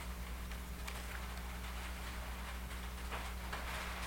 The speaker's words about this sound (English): It's raining. Yo! I did see a 20% chance of rain, but who cares? Let it rain.